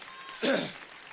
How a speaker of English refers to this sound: Hallelujah. Hallelujah. Clap your hands and give God some more praise here today.